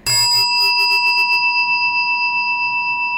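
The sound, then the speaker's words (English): A single meditation chime is struck at the start of a five-minute meditation, giving a bright metallic ring with steady high tones that sustain and slowly fade, with a faint shimmering pulse through the decay. “Allowing the sound of the chime to call you to presence in this moment, right here, right now.”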